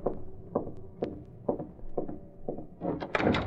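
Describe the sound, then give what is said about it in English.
Britt Reed opens the service door to Kane's apartment with a skeleton key: a steady series of soft wooden clunks about every half second, ending in a louder rattling clatter of the latch and door. No voices. “In a matter of minutes, Britt Reed, using a skeleton key, was opening the service door to Kane's apartment.”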